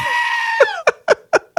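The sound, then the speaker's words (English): A goat gives one long, harmonic bleat, followed by four short, evenly spaced bleats in quick rhythm, loud and clear with no talking. “Party goat.”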